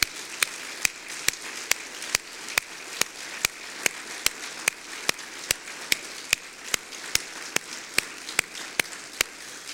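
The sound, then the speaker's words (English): A sustained round of applause from a crowd at a memorial service, in support of the family and to God, a dense, hissy wash of clapping with sharp, evenly spaced claps cutting through at a steady beat, continuing for about ten seconds without any talking. “Could we show our love and support not only for Jaylene and for this family, but to God himself with just a round of applause?”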